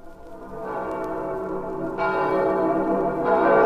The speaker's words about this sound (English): Listen to the bells of St. Peter's calling the faithful to midnight mass on this holiest of nights.